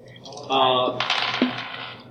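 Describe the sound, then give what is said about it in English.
Dice are rolled across a tabletop during a tabletop game, rolling for initiative, a quick burst of small hard clicks and rattles that tumbles for about a second and a half before settling. “Okay, did you guys know that all of you have rolled one triumph, one success, and one advantage for every for this entire stupid initiative slot thing,”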